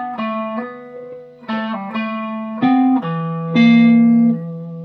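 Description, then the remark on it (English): A guitar plucked over the fingerboard, about 12 frets higher than where the notes are played, gives a mellow, hollow, almost clarinet-like tone: a handful of sustained notes rising and falling in a slow phrase, played alone without any talking. “You get that almost clarinet-like sound.”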